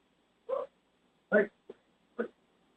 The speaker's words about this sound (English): One of our dogs was barking.